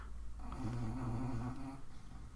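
A female dog snores loudly, one long rumbling, wavering inhale lasting over a second, with no talking.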